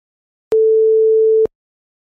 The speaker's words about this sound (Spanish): Y la sine wave, que es la onda sinusoidal.